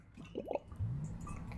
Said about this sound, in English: As I take a drink of water.